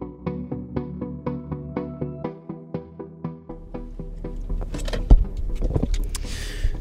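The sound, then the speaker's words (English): A steady rhythmic plucking pattern gives way to a low engine rumble and shuffling movement as someone gets into a car at 4 a.m., headed to an office before a drive to Lumpkin, Georgia; a sharp click like a car door or key, then rising hiss as the car gets going. No one speaks. “It's 4 a.m. and I just got in the car and I'm headed over to Julio's office to meet him there.”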